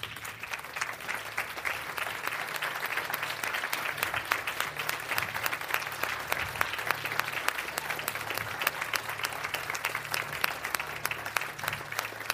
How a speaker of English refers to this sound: I want you to remain sitting, and I want our members to stand up, those who aren't, and give them a round of applause.